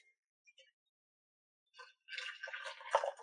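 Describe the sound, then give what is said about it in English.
A tiny amount of hot water is poured onto sweetened matcha powder containing cane sugar in a small cup: a couple of faint drips, a brief pause, then a steady trickling pour for about a second, with no talking. “With that, I'm gonna put a teeny tiny bit of water in there, hot water in there.”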